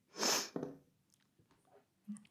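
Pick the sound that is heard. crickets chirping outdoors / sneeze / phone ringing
sneeze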